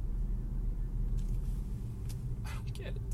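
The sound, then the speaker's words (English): A car pulls away, its low engine rumble steady throughout and easing slightly toward the end, with a few brief clatters and hisses over it. The speaker's mother is driving off to drop someone off at school. “Oh, my mom left.”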